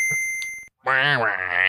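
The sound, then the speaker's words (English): A spoiler alarm sound effect: a steady, high bell-like tone rings for about half a second, then after a brief silence a loud, warbling, harmonic wail that bends in pitch. “So official spoiler alarm.”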